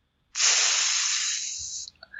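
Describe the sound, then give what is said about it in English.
A loud, steady sizzling hiss starts abruptly, holds for about a second and a half while slowly thinning, then cuts off, followed by a few faint, brief sounds. “Ooh, sizzling.”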